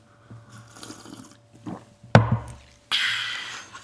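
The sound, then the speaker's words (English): A sharp clink of a cup, followed by a loud, airy slurp of hot decaffeinated tea, a man's morning cup of tea, lasting about a second, over a low steady hum with no talking. “taking a big slurp of his decaffeinated tea”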